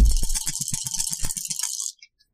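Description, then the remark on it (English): A voice mimics rolling dice: a rapid, hissy clatter of about a dozen clicks running for two seconds, then cutting off abruptly, with no speech. “All right, somebody simulate the dice noise. Die noise for me.”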